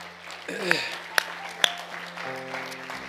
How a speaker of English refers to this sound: Why don't we clap our hands one more time again for our mothers?